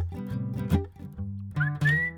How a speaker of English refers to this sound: looked down the path and saw a skunk, about the same size as him. It was whistling this happy tune and dancing.